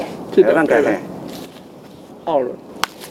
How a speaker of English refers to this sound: Hear that crunch as the pomelo breaks off the branch? In Tainan, it's the familiar sound of a family reunion.